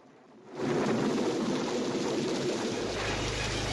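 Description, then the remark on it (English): In a film scene, heavy rain sets in abruptly after a brief quiet moment and pours steadily over a rough neighborhood as a man marches through it, with a deep thunder rumble swelling beneath the downpour near the end. No one speaks. “And so he's marching through the rainy, bad neighborhood.”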